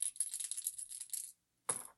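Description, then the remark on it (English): A die nested inside another die is rolled, rattling and clattering across a hard surface in a rapid run of bright clicks. It stops briefly, then one more sharp tumble follows. Fairly loud, with no voices. “I'm trying a new die / dice. It's a die inside of another die.”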